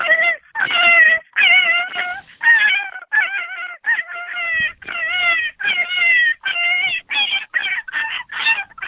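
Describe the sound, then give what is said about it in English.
A voice imitates a rabbit distress call used for predator hunting: a rapid, loud run of shrill, wavering squeals, each cry breaking off and starting again for several seconds, continuous with no talking. “So we'll do rabbit distress, and we'll cut it off with a howl.”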